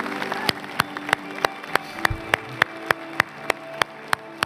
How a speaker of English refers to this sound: Come on, can we give God a round of applause tonight?